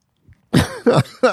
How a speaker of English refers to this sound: I coughed.